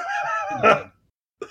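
A woman coughs: a strained, voiced sound rises into one sharp, harsh burst, followed by a brief silence and the start of another cough.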